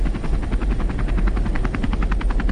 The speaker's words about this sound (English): This is him on a helicopter to start with.